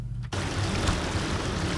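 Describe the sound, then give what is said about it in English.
Loud, steady rush of gushing floodwater from a river that overflowed its banks after a downpour, at a road cut-off point in Abamfu; a dense continuous roar that starts abruptly after a brief low rumble and carries on without pause; no voices. “Sounds of gushing water at the cut-off point here at Abamfu.”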